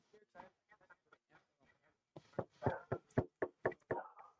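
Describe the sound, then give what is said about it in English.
Knocking on a door: soft, hesitant taps at first, then a run of louder, sharp raps in quick succession, with no one talking. “I'll give it the good old knowledge knock first on the off chance like sleep or something.”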